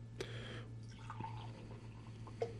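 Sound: beer being poured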